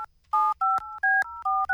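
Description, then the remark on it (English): A phone number, thought to be John Campbell's, is keyed in to call him: about five quick dual-pitched touch-tone beeps in a steady sequence, separated by brief clicks, with no one talking. “You say who you think you know is their number, okay, and we'll call them and see if that's their number.”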